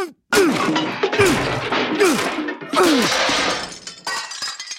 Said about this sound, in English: I'm gonna smash this PCD with my bureaucrat hammer.